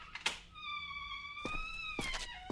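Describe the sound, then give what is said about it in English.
The door of a house creaks open with a long, steady squealing groan as a man is let in, framed by a few dull knocks and thuds that could be footsteps. No one speaks. “I'm opening the door, mate.”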